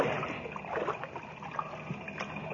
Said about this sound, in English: Yeah, sounds like a motor of some kind. It must be back outside the opening. The mine's pump engine. Pump? Oh, automatic, I guess, yeah. When the water reaches a certain level, it cuts on.